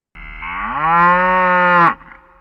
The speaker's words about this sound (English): Why is a cow mooing?